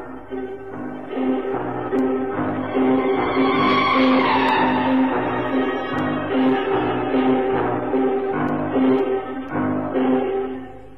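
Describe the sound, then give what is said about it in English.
A bus engine, on a ride to the old Brompton Road, labours loudly and continuously, its rough drone rising and falling as the gears grind through changes, with no voices over it. “I took a bus to the old Brompton Road, and then I wished I hadn't.”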